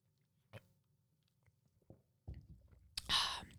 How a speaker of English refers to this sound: sorry, I need a sip real quick.